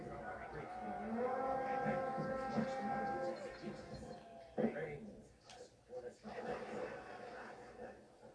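animal, donkeys braying

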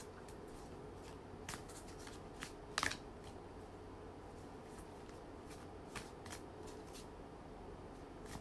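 household object, shuffling tarot cards

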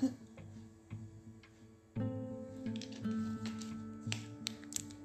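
food or drink, sipping coffee

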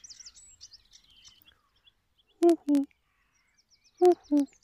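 bird, common cuckoo calling

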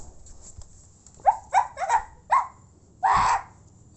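animal, dog barking and growling

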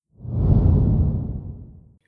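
sound effect, whoosh transition sound effect

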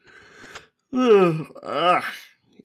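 human body sound, yawn

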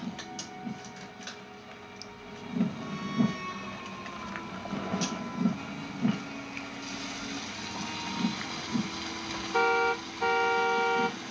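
vehicle, car horn honking repeatedly

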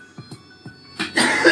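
human body sound, person coughing

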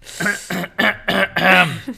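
human body sound, throat clearing and coughing

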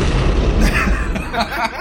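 sound effect, explosion sound effect

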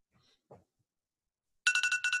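signal or alarm, phone ringtone ringing

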